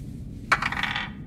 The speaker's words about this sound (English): I will roll real dice.